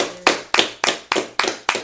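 Six sharp, loud claps land at a brisk, steady rhythm, like an audience clapping in unison at a live event to welcome a speaker coming up, with no talking over them.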